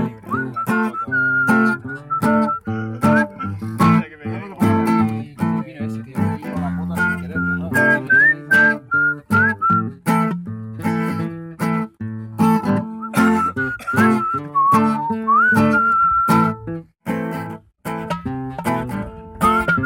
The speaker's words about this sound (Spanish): Saben silbar, ¿verdad? Unidos al silbido.